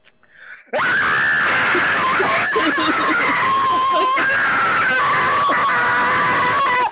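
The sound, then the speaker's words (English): A person holding a smile lets out a long, loud, strained scream for about six seconds, the pitch wavering and strangled as if forced through clenched teeth, unbroken. “You have to scream the whole time while you're doing it.”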